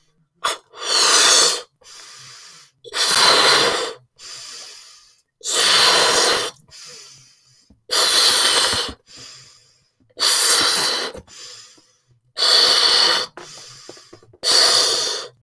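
Someone blows up a balloon with seven long, forceful, airy puffs, each followed by a shorter, softer intake of breath, in a steady rhythm with no talking.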